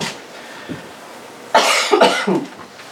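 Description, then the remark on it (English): A speaker giving a talk coughs loudly, breaking the quiet: a sharp burst followed by a couple of rougher, rattling hacks in quick succession. “I'm apologizing for having a cough.”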